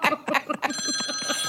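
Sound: telephone ringing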